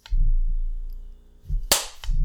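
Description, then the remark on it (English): A single sharp hand clap, loud and bright, cracks out once over a low rumbling background hum, with no talking around it; the clap is made to mark the start of a recording so it can be easily seen. “We're recording right now, so I'm going to clap, and then we're actually going to start.”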